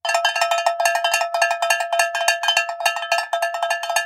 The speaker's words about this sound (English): Here come the cowbells of inspiration.